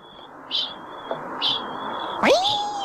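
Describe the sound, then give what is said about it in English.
A kakapo calls: two short, high, raspy squeaks a second apart, then a louder swooping note that dips sharply and levels into a sustained, harmonic-rich tone, over a thin high whine. “I believe we're about to start hearing the chinging.”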